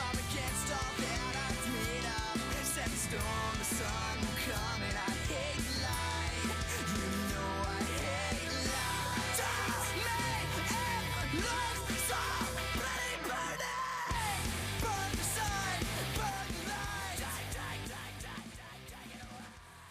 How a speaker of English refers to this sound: This is most definitely your style. Yeah, some loud screaming.